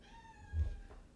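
A single drawn-out cat meow, thin and fairly quiet, with a steady tonal whine that fades after about a second over a soft low rumble.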